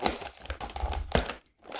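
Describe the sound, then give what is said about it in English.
Crinkling and crackling of the plastic packet of Bean Kind vegan fine chocolates with pink Himalayan sea salt caramel truffles, 72% cocoa, being pried open, a busy run of rustles with a sharper crack near the middle, then a brief pause before more crinkling resumes. “It's quite hard to pick the packet open”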